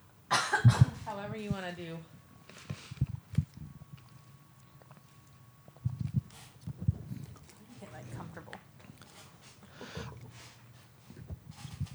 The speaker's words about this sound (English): I keep like coughing, so.